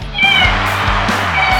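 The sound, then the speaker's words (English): The cat Bucky, star of the show Life with Bucky, meows in a short, drawn-out, slightly wavering call, fairly loud, heard on its own with no talking over it. “Now the star of Life with Bucky, our royal Buckiness, the world's most amazing cat, Bucky.”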